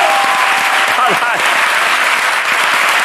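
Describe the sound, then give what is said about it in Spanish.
An audience applauds for Jorge Ponte, who is out in the street in the cold, with steady, dense clapping at a strong, even level and brief whoops or vocal bursts poking through. “Luego igual hay que pedirle que venga aquí también para que la gente le vea un poquito, pero por lo pronto pide un aplauso, porque está en la calle, pasando frío, pero pensando chistes, para Jorge Ponte, que está ahí fuera, ¿sabes?”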